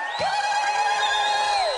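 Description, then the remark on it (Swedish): A loud crowd in Piteå cheers, applauds and whistles in praise of Jesus late at night, with one long, steady, high-pitched whistle ringing out above the noise for most of the burst before sliding off at the end. “Ska vi ge Jesus den största praise, applåder, busvisslingar, killeli, vad du vill?”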